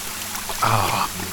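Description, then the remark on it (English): A short burst of water gushing from what looks like a kid's drinking fountain in a plush room, lasting about half a second before cutting off, with faint background noise around it. “There's this, looks like a kid's water fountain.”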